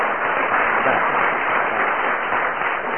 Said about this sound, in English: So can we have a round of applause for our two adjudicators?